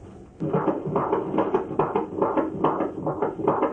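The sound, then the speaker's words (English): A fetal heartbeat on a doppler monitor at a routine prenatal checkup, the baby boy's heartbeat heard for the first time: rapid, steady whooshing pulses thumping through hissy static, fairly loud, with no voices. “We're going to listen to the heartbeat now.”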